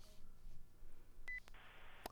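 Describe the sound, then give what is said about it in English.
A short, thin electronic beep on a telephone line as a guest caller joins a broadcast interview by phone, followed by a burst of hissy line noise and a couple of sharp clicks, fairly quiet and with no talking. “I heard a little beep, so I knew you had chimed in.”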